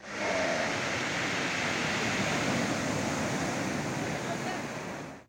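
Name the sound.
ocean waves and surf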